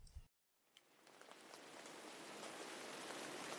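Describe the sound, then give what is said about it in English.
Steady rain hisses around a gazebo, swelling in after a brief silent gap, with scattered sharper droplet taps against a surface overhead; no one speaks. “And it's a monologue under this, in this gazebo. It's still raining.”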